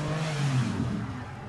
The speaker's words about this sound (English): Ferrari, 456 GT about to drive by. Yep. I think it's BBS wheels. Yeah. Sounds amazing.